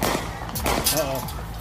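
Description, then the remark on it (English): A few sharp gunshots crack out at irregular intervals, each a brief loud bang, while a voice calls out between them over a constant noisy background. “Oh, those are gunshots down there.”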